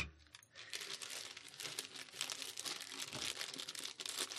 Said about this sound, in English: Now I'm gonna make some plastic noises for a second. You got a Foley artist over here.